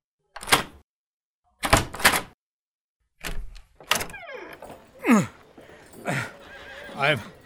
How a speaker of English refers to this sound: I've gotten the jailhouse door open with my knee, gentlemen.